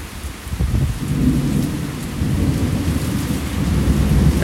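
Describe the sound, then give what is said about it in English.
Deep rolling thunder rumbles continuously beneath steady, heavy rain during a storm with lightning flashes and blowing wind, the low booming swelling and fading while the downpour hisses throughout. No voices. “Flash, boom, bang. Rolling thunder.”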